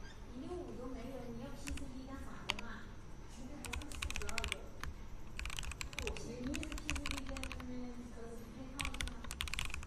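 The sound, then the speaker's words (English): Bursts of crisp, clacky keystrokes from mechanical keyboard switches in a sound test of different switches, typed in quick clusters with short pauses, while people talk softly underneath throughout. “they have like sound tests so you can see how they sound and everything.”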